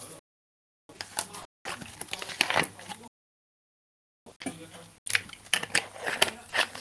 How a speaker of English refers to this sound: Sorry. I just choked my water.